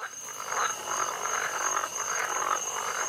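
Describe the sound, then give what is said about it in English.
A dense chorus of frogs croaks continuously in rolling, pulsing waves, with a thin steady high-pitched drone running underneath. No one speaks. “The sun's shining, birds are tweeting, frogs croaking.”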